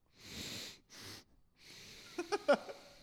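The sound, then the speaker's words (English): Two strong, breathy sniffs into the microphone, followed by a longer nasal inhale with small clicks and snuffles. Loud, with no talking. “Sniff into the microphone.”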